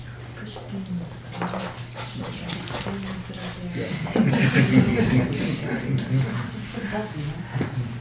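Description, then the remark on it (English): A female dog, past puppy age, whimpers and whines in short, high, wavering cries over a steady low hum, growing louder and busier in the second half, with faint voices. “She's past puppy, but she's staying like a puppy.”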